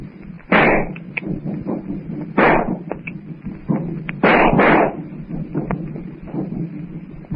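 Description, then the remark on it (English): Several loud, sharp gunshots from a revolver and rifles ring out at irregular intervals, about four blasts with short echoing tails, over a steady low rumble and windy background noise. No one speaks. “I shall use my revolver, Francois. Load both rifles deep.”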